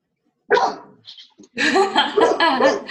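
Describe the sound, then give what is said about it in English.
A dog named Baguette barks: a single sharp bark, a brief pause, then a longer run of loud, excited, yappy barking that fills the rest of the moment. The dog is barking because someone is at the door. “Telling you when someone's at the door.”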